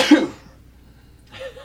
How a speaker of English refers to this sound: Was that a real sneeze? You got a problem with that? You sneeze like an unenthusiastic cartoon.